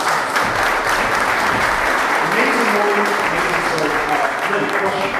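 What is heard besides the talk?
audience round of applause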